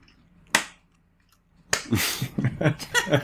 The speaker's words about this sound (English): Clinker does a slow clap.